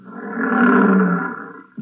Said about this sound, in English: Oh, here come the lions. George, they're frightening. Take it easy, Lydia. They're just illusion. Lions were 15 feet away.